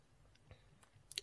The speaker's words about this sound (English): Okay, ready? Cheers. Cheers. Okay, we're chewing. It's burning already. It's burning.